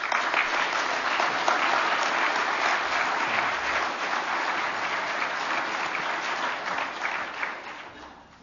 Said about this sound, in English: And they do deserve a round of applause for their work.